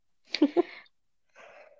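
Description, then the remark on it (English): A single sharp sneeze with a quick two-part burst, followed after a brief pause by a softer, breathy exhale or sniff. No speech accompanies it. “I'm like, yeah, I have one friend who says that if you sneeze three times, there's no blessing good enough and you're already possessed.”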